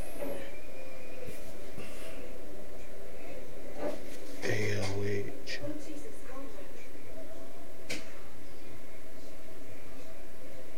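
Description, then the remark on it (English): A door opens partway through, a short clunk and scrape standing out over a steady hiss of background noise, with faint muffled voices. “Let me open the door.”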